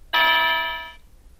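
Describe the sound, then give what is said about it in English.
A single bell-like electronic alarm chime, alarm sound 1 of three selectable on a voice-commanded alarm, strikes sharply and rings for under a second, bright with shimmering overtones, gradually fading before cutting off. No voices accompany it. “To choose an alarm sound, say alarm 1, alarm 2, or alarm 3. Alarm 1.”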